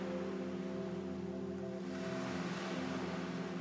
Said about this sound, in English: People love it because there's no one else out. It's just you and the waves.